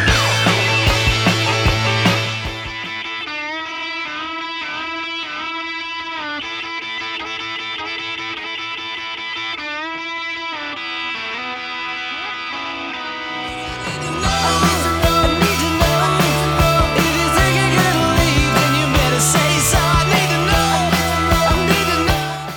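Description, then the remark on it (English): A rock band plays loudly as a lead electric guitar takes a solo with sustained, singing notes, easing into a sparser passage before the full band crashes back in, louder and denser. “And here's the guitar solo”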